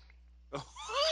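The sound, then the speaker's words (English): A wet slurping sip of a Bellini cocktail from a glass after a brief quiet moment, rising into a drawn-out, airy suck that ends abruptly; no one speaks. “Let me take a sip of this Bellini.”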